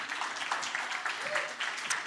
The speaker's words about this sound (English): Keep that round of applause coming. Come up here, gentlemen. Come on, keep that applause coming.